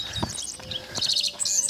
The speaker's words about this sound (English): It is like a sea of grass around me. There's great waves of hills rising up, and the dawn light is just coming over the horizon. The birds, I mean, it's just crazy.